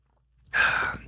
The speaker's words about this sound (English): Let's all get a sip here. See how we like the taste. Let's give it a little nip.